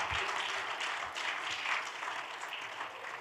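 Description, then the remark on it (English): An audience claps their hands together in praise of God, a steady, dense burst of applause that holds at an even loudness throughout, with many overlapping claps and no voices standing out. “My God, clap your hands and give God a great big praise.”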